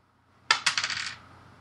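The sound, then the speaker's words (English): Dice rolled for damage during a tabletop game battle against wolves clatter onto a hard table, a sharp first hit followed by a quick run of rattling bounces that settle within about half a second, crisp with no voices. “Boom! Goes the dice.”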